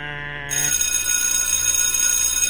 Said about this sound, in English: I don't know why that buzzer was annoying. It's like a school bell. It's like a school bell. That's what it was.